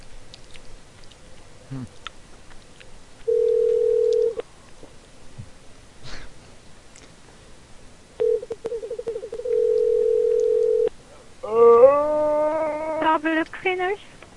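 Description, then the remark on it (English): An outgoing phone call rings twice with nobody answering, each steady electronic tone lasting about a second, heard clearly with quiet background noise between, before a rising burst of mixed tones at the end. “No, nobody's answering.”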